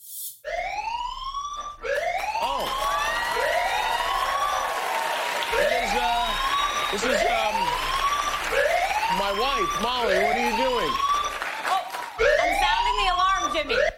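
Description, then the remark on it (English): An alarm found backstage on Jimmy Kimmel's show wails loudly and continuously, its pitch sweeping up and down in quick repeated whoops about once a second, with a rough crowd-like noise underneath. “Why are you sounding an alarm you found backstage?”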